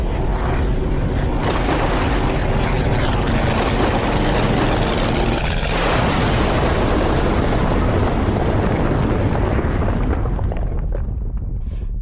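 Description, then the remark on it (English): A massive, roaring explosion as a bridge is destroyed, with heavy rumbling and crashing debris, loud, swelling in violent bursts and sustained destruction across the whole stretch, with no voices. “The bridge was destroyed.”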